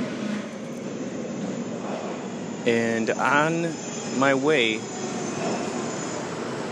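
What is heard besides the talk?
subway station ambience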